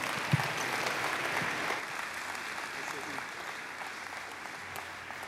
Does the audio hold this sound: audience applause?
yes